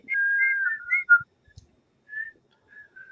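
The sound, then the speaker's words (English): Someone whistles with their lips, a wavering, warbling tune of short high notes for about a second, then a pause and a few softer, fainter whistled tones trailing off. “Maybe we need a whistling revival, you know.”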